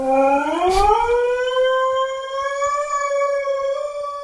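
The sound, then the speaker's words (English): A husky named Feya, sitting up on a sofa, howls at the window in one long, loud note that rises in pitch at the start, then holds steady and siren-like, with a brief scuffing noise near the beginning. “So, this is a husky called Feya sitting up on the sofa, howling at the window.”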